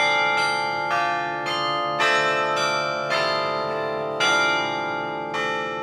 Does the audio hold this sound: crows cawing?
no